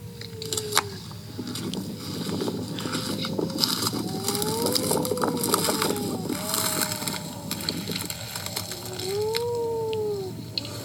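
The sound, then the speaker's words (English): A wedge-tailed shearwater, a burrow-nesting seabird, calls during the day to other birds, giving several drawn-out, moaning wails that rise and fall in pitch, repeating over a steady rushing background hiss. “So that's a wedge-tailed shearwater calling during the day to other birds.”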